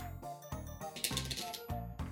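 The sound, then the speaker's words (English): A deck of cards being shuffled, a quick run of crisp, rapid clicking and flutter that comes in short bursts over about two seconds, with no talking. “Again, we are running out of cards in the deck, so who knows if that shuffle came through.”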